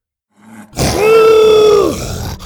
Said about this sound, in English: The two dinosaurs rolled across the dirt, biting, clawing, roaring, hissing.